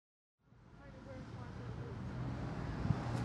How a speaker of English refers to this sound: There's traffic roaring up and down, and on this very wide street, on one side, the north side, there's stall after stall of market traders and lots of shops spilling out over the wide pavement, and it's teeming with people doing their shopping